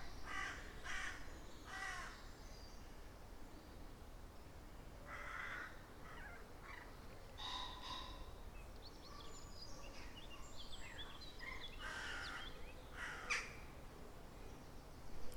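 Several crows caw repeatedly in Staticum Woods, their harsh calls scattered and overlapping, with other birds faintly calling beneath and a soft outdoor hush throughout.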